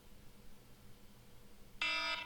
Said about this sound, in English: There's the alarm right there. There you go. The alarm sounds.